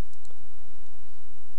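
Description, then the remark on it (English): A couple of quick, crisp clicks close together near the start as a mouse button is pressed to click the power on button of a virtual machine, followed by a quiet background hiss with no talking. “You would turn on your virtual machine by clicking the power on button.”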